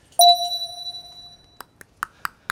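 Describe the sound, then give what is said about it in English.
A single bright bell ding, signaling the start, rings out clearly and fades slowly over about a second, followed by a few short, sharp taps in an uneven rhythm. No one speaks. “Listen for the bell. Ready, set, go.”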